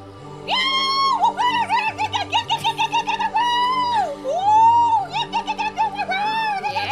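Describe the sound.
A person imitates the scream of coyotes heard outside an apartment: a loud, high, wavering howl that breaks into rapid warbling yips and sliding wails, running continuously for several seconds with no talk over it.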